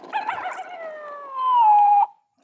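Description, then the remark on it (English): A single voice imitating a coyote howl, picked by spinning a Wheel of Impressions: a wavering yip that slides down into one long, steady wail, swelling louder before cutting off abruptly after about two seconds. “So why don't we spin the Wheel of Impressions? Coyote goes.”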